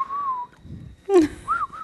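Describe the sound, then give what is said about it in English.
A person who is bad at whistling whistles a few short, breathy notes: a held tone, a quick rising swoop, then two brief chirps, slightly wobbly, imitating someone else's whistle. “Can I impersonate someone whistling? I'm very bad at whistling, you know that.”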